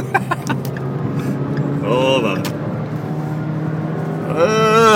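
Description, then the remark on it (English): A car engine hums steadily in traffic, rising in pitch as it accelerates near the end to get in front of a truck, with a man speaking briefly over the road noise. “That's how you get in front of the truck guy, is you disobey the laws of traffic.”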